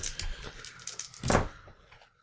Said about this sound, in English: Roll that roll. Roll all those dice.